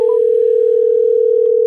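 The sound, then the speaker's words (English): A steady, continuous telephone dial tone, heard while placing a phone call, holds at a single pitch throughout, loud, with no voices or other sounds over it. “Let's just call him up on the phone and see if we can get him going on there.”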